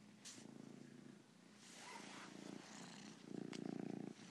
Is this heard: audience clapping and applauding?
no